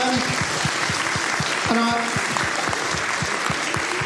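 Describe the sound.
A live audience breaks into sustained applause for an audience member's question, dense overlapping claps at steady volume across the whole stretch, with a few brief voices murmuring underneath.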